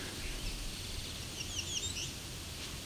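A song sparrow sings faintly, a short run of quick high notes rising out of a steady outdoor hiss and low rumble, with no voices present.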